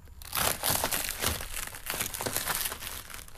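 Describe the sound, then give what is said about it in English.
Crisps being crunched into a special microphone for listeners to guess the type of crisp, with a dense run of sharp, crackly bites and crinkles, steady and fairly loud for a few seconds with no talking. “The question is this: can you tell the type of crisp it is just from the crunch it makes?”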